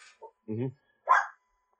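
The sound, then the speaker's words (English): A dog gives three short, sharp barks in quick succession, moderately loud, with brief silences between them and no talking. “Dog agrees with me.”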